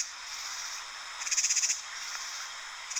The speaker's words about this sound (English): Now, I was trying to think about sounds that I really like, and I sure like the sounds of katydids and cicadas during the summer.